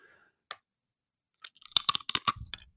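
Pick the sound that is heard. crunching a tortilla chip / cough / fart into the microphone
crunching a tortilla chip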